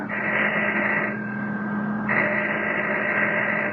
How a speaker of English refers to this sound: All right, we'll start legit. I'm ringing the doorbell.